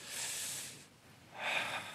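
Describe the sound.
A person demonstrates slow, relaxed breathing, imitating a Bushman in a totally safe environment: a long, airy inhale, a brief pause, then a steady, breathy exhale, with no talking.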